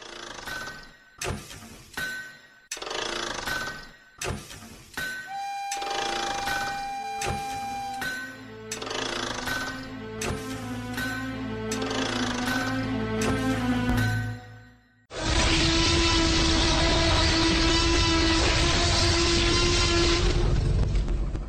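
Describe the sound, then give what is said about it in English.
Sharp metallic clanks and ringing chime-like tones build for several seconds, then give way to a loud, steady rushing roar of a train running on rails, standing in for the lightning rail of Eberron, with a low sustained hum throughout. “So climb aboard the lightning rail and join me as we look into the steampunky world of high adventure as presented in Eberron Rising from the Last War.”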